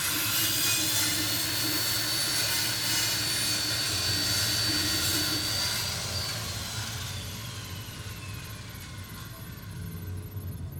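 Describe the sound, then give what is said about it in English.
A water-cooled bone saw, used to remove a super mutant's skull cap, runs loudly, a steady high whine over a broad grinding roar; partway through, the whine slides down in pitch as the noise eases slightly. No one speaks. “Jogging back to her equipment room, Lilith soon returned with a water-cooled bone saw, borrowed from Foundation, and a set of safety glasses.”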